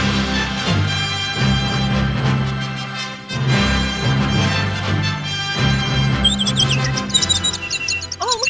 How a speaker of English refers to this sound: Birds chirping away. Look at us. They love us.